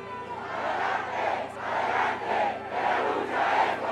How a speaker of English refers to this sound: So right now I'm standing in a crowd of people and we're right underneath the National Congress. It's in the evening at 8:20 on Saturday, January 22nd, and the president-elect Xiomara Castro has just arrived.